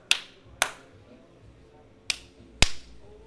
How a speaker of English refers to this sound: I love the sound of those claps. Yeah. We just hunched. We just handshaked our handshake.